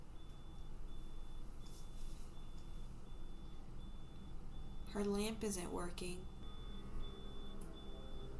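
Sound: smoke alarm beeping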